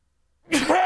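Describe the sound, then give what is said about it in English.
A short quiet pause, then one sudden, loud sneeze bursts out, sharp and breathy, with no talking. “Hang on, I got to sneeze.”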